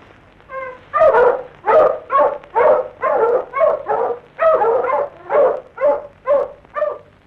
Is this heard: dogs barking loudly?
yes